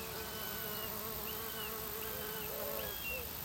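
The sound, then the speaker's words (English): A steady drone of crickets and buzzing insects in the morning sun among grasses and bracken at British Camp, England, with wingbeat hums rising and falling in pitch as they pass, over a constant soft background hiss and no talking. “I was taken by the sound of buzzards clearly calling from across the water, which really helped me make my decision to place the microphone so as to pick up a soundscape of foreground crickets and buzzing insects in the morning sun”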